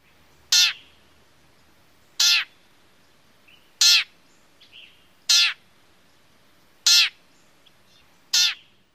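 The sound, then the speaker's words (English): Six harsh, nasal call notes of a yellow-breasted chat, its typical call note, evenly spaced about one and a half seconds apart, loud, with a faint softer note between two of them against quiet background. “Their typical call note sounds like this.”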